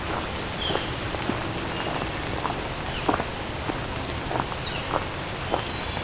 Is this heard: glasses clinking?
no